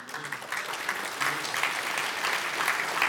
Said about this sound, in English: That's really cool. I haven't even told you what God's done, and you're clapping already, so that's awesome.